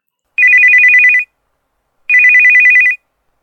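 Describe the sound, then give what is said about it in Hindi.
A phone line rings twice on an outgoing call placed by a colonel from his kitchen, each burst a rapid warbling trill lasting under a second, separated by a pause of silence. Clear, with no voices. “वो झट से उठे, रोजाना की तरह तैयार हुए और पहली बार किचन में घुसे, और किचन में घुसते ही उन्होंने शाम को फोन लगाया।”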